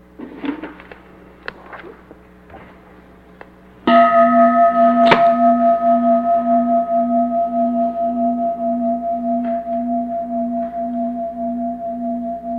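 After a few seconds of quiet rustling and clicks, a gong is struck once and rings out loudly, its deep, wavering tone sustaining and slowly fading over many seconds with no voices.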